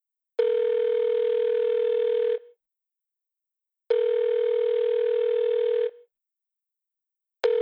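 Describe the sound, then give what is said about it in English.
A speed-dialled telephone call rings out in long, steady electronic bursts, about two seconds on and a pause between. It is clear, with no voices. “Kincaid speed dials the number for his superior, codenamed U.”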